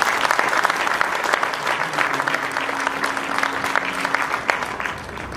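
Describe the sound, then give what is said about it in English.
An audience of Muslims gives itself a round of applause for being Muslims for peace, a sustained round of clapping, dense and steady throughout, with a faint hum running underneath for a couple of seconds and no voices standing out. “So I think you all deserve a great round of applause for being Muslims for peace.”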